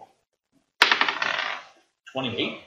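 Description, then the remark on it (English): Dice, including a d20 rolled for a dexterity saving throw with advantage, clatter sharply onto a hard table, rattling and tumbling for almost a second before settling, then a second short burst of rolling follows. “It gives you advantage, so you roll the dice twice and take the higher.”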